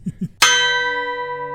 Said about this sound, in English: And there's the opening chime.